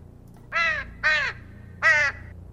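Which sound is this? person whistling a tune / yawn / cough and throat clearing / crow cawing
crow cawing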